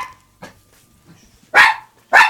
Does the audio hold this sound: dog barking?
yes